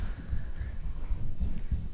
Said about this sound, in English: I'm just looking at our kids leader coming in as I hear all the footsteps running around.